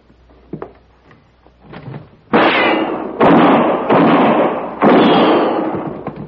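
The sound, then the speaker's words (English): A few faint creaks and knocks as a door is eased open by someone staying down on the floor to draw gunfire, then four loud, booming gunshots in quick succession, each ringing out with a long echoing tail. “I'll stay down on the floor and open the door to draw his fire.”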